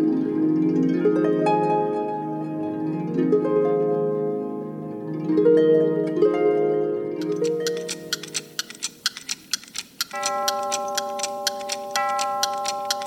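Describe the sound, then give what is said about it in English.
A clock strikes eight o'clock, chiming a series of ringing, resonant tones that linger and overlap, then gives way to steady ticking with a sustained tone underneath. No one speaks. “Ah, it's 8 o'clock.”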